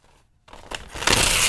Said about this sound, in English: That is extremely loud, crinkly paper today.